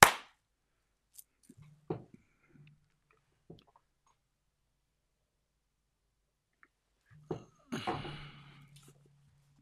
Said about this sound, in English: All right, I'm just going to do a clap so I know where to edit.